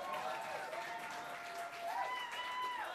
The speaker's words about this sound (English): The audience applause will give it. Tinder Bumble Makeover or a serious one. Tinder Bumble Makeover. Let me hear a round of applause.